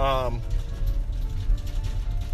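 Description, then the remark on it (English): A steady, deep truck engine rumble fills the background, heard from inside the truck, with a brief vocal sound at the very start over the continuous low drone. “Excuse all the truck noise, if you will.”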